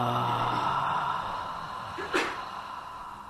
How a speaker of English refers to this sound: And a deliberate out-breath with the belly with a ha.